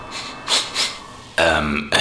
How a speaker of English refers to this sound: Did you fart? No, my master. Young Skywalker, did you... Yes, I farted.